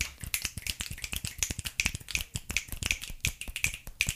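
A flurry of sharp finger snaps from several people snapping in appreciation, overlapping in a quick, uneven patter for about four seconds, crisp and bright with no talking.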